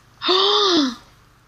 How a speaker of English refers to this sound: Audible gasp.